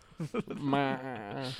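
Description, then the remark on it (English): A person gives a single drawn-out, wavering "baaa" that mimics a sheep's bleat, preceded by a few short vocal bursts and lasting about a second. “Like, I would literally like you to baw like a sheep.”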